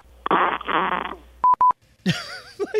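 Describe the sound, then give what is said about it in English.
A tinny fart sound squeezed through a phone speaker lasts almost a second, followed by two or three short electronic beeps and then a brighter, wavering squeaky noise. No one speaks. “They had to call three separate times, hold in their farts, because you have to get through the whole, hey, do this, sing this song, blah, blah, beep, beep this.”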